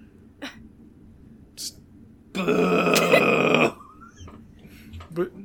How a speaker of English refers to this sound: But I don't know why he's booing. Keep going. Okay, so don't listen to him.